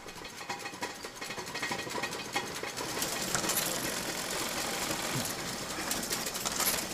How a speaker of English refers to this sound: including a linotype machine used to produce metal type, line by line, hence the name. With its 90-character keyboard, creating compositions from molten metal, this is a word processor with some significant weight.